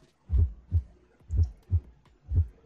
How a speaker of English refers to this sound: The faint heartbeat.